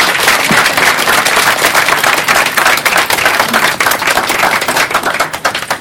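An audience applauds steadily, a dense, loud wash of many hands clapping at once, sharp crackling claps blending into a continuous roar that holds for several seconds with no voices.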